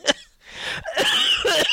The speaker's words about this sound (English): I'm getting over some sort of chest ailment. And that is going to mean I got to edit out a lot of coughing from this week's episode.